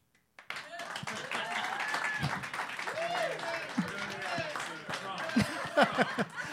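A crowd breaks into steady applause, a dense patter of many hands clapping for several seconds, mixed with cheering, whoops and scattered chatter from the audience, in response to the film title My Best Friend's Wedding being given as an answer in a game.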